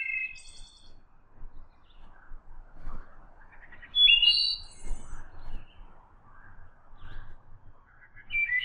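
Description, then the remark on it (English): Several songbirds, including black-and-white warblers, eastern wood pewees and a common yellowthroat, sing in a quiet forest, with high, clear chirps and whistled phrases coming in bursts over a soft natural background. “Black and white warblers, the eastern wood pewee, you'll hear them a lot more than you'll see them around here, but they're a really popular species around here, and a common yellow throat.”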